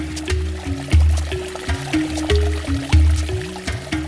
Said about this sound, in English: But before we get into that, let's pour some libations.